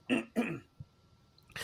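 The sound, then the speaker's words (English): Two sharp coughs in quick succession, followed by a brief pause and a soft throat sound, then a breathy noise at the end. No talking. “And sorry, I got a little bit of a cough.”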